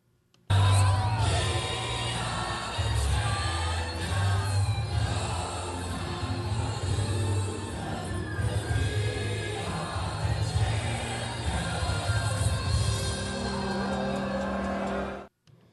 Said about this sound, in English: it was performed last night by a crowd of a couple hundred thousand people.